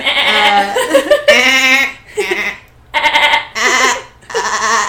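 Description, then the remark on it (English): A person loudly imitates a goat's bleat, letting out a string of about five wavering, nasal cries in quick succession with brief gaps between them. “That sounds like a goat.”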